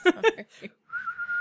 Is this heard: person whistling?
yes